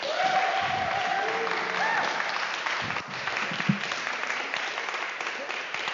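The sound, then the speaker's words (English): A church audience claps steadily and loudly for a speaker being introduced, a dense sustained wash of applause lasting the whole stretch, with faint voices and scattered whoops mixed in. “And without further ado, would you give a huge Roosevelt round of applause for”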